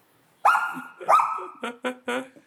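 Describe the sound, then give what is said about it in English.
A dog named Chad barks five times loudly: two longer, rough barks followed by a quick run of three shorter, sharper ones, with no talking in between. “Chad, shut up. Is your dog's name Chad?”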